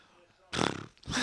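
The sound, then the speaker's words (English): A voice imitates a drum roll with a loud, buzzy, rapidly fluttering burst of mouth noise, breaking briefly before a second raspy blast starts. “Do a drum.”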